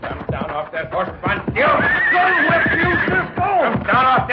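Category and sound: animal, horse neighing and hooves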